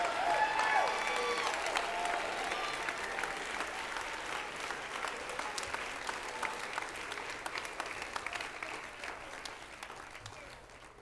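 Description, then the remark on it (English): An audience on their feet claps their hands to make a joyful noise to the Lord, a dense, sustained burst of applause that stays steady and loud across the whole stretch, with faint voices mixed in underneath. “Come on, keep clapping right now.”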